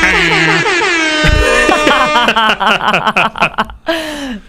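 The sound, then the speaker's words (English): A loud, brassy air horn sound effect blares in sustained blasts, then breaks into shorter choppy bursts, with some chuckling voices near the end. “Oh, we didn't do the air horns.”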